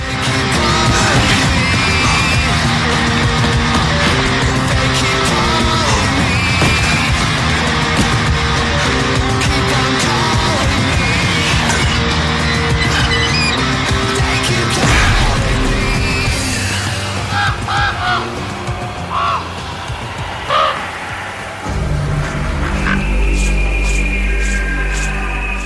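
An industrial rock song plays loud and dense, with distorted guitars and driving instrumentation filling the whole stretch, thinning into a sustained low drone near the end. No one talks over it.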